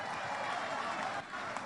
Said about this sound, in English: When it's money, that's when you clap.